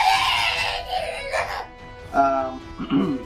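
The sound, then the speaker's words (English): A voice lets out a strained, drawn-out scream, imitating a character in agony as green stuff exits his body, followed by a couple of shorter wailing cries, loud. “So he's actually, as the green stuff exits his body, he is also screaming.”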